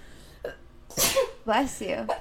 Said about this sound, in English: Bless you.